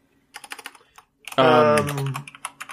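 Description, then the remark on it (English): Crisp clatter of computer keyboard typing in quick bursts, briefly interrupted by a drawn-out vocal sound before the key clicks resume. “I'm so happy you're typing this and not me.”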